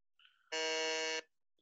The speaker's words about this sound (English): Okay, next question. Fingers on buzzers.